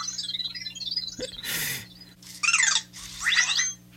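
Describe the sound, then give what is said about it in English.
A small Vector robot chirps in bursts of quick, bright, high-pitched warbling sweeps, two main runs near the end, over a steady low hum with a brief hiss earlier. No one speaks. “I hear something chirping in the background there.”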